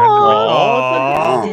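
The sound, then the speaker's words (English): A female long-haired dachshund named Penny whimpers nervously, a single continuous high-pitched whine that wavers and bends in pitch for a second or two, fairly loud and with no talking over it. “Oh, she's nervous.”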